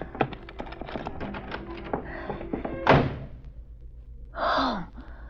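Clicking and rattling at a lock ends in a single heavy thud of a door shutting as it is locked, followed by a sharp breathy gasp.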